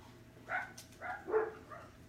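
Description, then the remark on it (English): A dog gives four short, quick barks in a loose rhythm, fairly quiet, with no talking over them. “Even the dogs love that one.”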